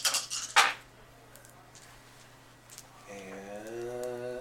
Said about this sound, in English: Okay, I'll just roll these dice then.